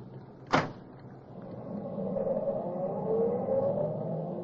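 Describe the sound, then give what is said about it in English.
A car door slams shut with a single sharp thud, then an engine revs and the car pulls away, its steady motor drone building and continuing. “Here's the car, I think.”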